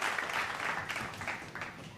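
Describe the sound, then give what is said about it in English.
An audience applauds steadily, dense overlapping claps forming a broad, even hiss of moderate loudness that holds for the full two seconds with no voices on top. “You know, let's give Big C a round of applause. Let's clap it up for him.”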